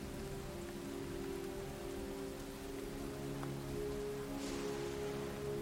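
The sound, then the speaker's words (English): Steady rain patters evenly throughout, with a low, continuous rumble of thunder underneath and no voices. The hiss of falling rain stays constant. “You hear rain and thunder.”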